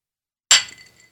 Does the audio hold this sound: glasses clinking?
yes